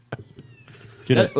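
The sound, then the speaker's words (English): A hairless cat meows twice in quick succession, fairly loud, the first cry longer and the second short, after a quiet stretch of faint clicks and rustling. “I brought my hairless cat in.”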